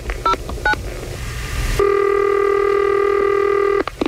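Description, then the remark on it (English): A phone number being dialed to call a man who rented a vehicle: two quick touch-tone beeps, then a steady, buzzy electronic tone that holds for about two seconds before cutting off. No one speaks. “We call this guy, rented a vehicle, damaged it, and put a rim on himself.”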